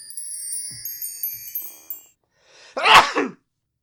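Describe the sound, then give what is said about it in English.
A single loud sneeze bursts out near the end, preceded by faint bright tinkling tones that fade away, followed by silence. “God bless you.”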